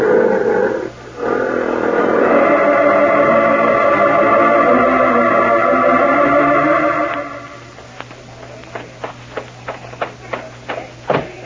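Deep, rumbling lion roars overlap in a loud, sustained growl lasting about seven seconds, then fade into a run of sharp, evenly spaced clicks or taps.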